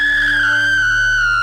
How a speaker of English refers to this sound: The actor screams out in terror.